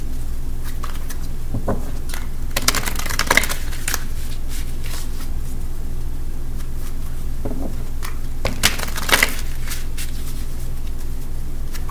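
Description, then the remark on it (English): A deck of tarot cards being shuffled, with two bursts of riffling and rustling around the three- and nine-second marks over a steady low hum, no talking. “One more good shuffle.”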